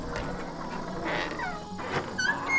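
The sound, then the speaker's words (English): The door to a pigsty creaks open on unoiled hinges, giving a few thin, high-pitched squeals that bend up and down in pitch over a soft, steady background hiss. “Yes, here's the door. I will open it. It needs oiling, though.”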